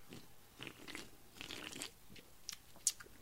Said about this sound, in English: Anyway, let's both take a big sip.